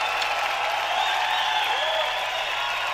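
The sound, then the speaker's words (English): A crowd applauds and cheers in a dense, steady roar of clapping and shouting that stays loud and continuous from start to finish, with no pauses and no clear voices. “So we cheer for that.”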